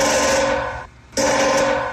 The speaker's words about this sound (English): There is a woodpecker on my next door neighbor's satellite dish. Ready? Ready? This guy was at his wit's end because this has been going on for about 2 days. The woodpecker was just up there like making as much noise as possible.